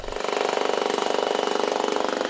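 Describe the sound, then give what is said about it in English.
A large jackhammer digs into rock to carve out a second bedroom in a home, a loud, rapid, steady hammering with an engine-like roar that continues without pause, with no voices. “Basically, a rather large jackhammer.”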